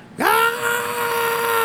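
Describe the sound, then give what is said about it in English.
A single voice lets out a loud, sustained scream that rises sharply then holds steady for over a second, imitating a protester's shout, alone. “Instead of words, you just hear screams of...”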